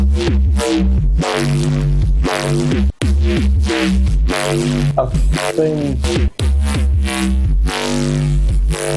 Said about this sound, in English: The process behind that was, I think I started with like two sine waves, just a little bit detuned, and then it's just layers of soft, a bit of soft clicking, maybe a bit of like a guitar amp. I put like a frequency shifter, just a little bit off